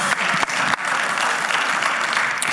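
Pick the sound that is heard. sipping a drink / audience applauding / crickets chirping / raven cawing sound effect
audience applauding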